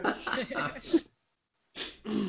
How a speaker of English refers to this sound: Don't make me laugh. I'm coughing already.